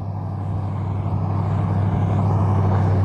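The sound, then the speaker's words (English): A car drives by, its low engine rumble and road noise steadily growing louder over a few seconds, with no one speaking. “Hold on, there's a car coming.”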